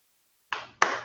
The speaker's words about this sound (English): Yes, snaps and claps. Claps and snaps.